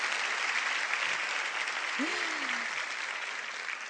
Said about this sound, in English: And Mayor Lee and Mayor, we should applaud them. Now you can applaud.